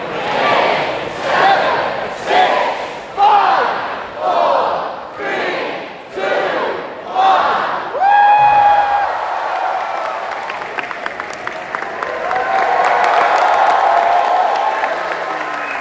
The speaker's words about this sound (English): The roof absolutely came off. I mean, people were just screaming, singing, jumping up. And this is the Barbican.